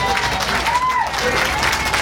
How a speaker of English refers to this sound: naturally there's a big picture of Nick and Uncle Vince on the side of the bus, and there's a small crowd here, I would say, 30 or 40 people.